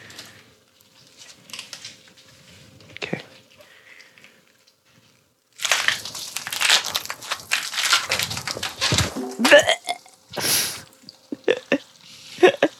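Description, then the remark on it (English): Foley of a head being torn off: sparse faint clicks, then several seconds of loud, dense wet crunching, squelching and ripping with sharp snaps, ending in a few gurgling bursts. “All right, this is a head being torn off.”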